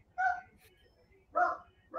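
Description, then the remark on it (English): A dog barks twice, about a second apart, each bark short and somewhat muffled, over a faint low background hum. “Well, your dog probably senses it.”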